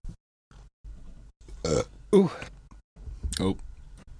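Three loud, throaty burps erupt in quick succession, separated by short pauses, with faint shuffling and breathing noises around them.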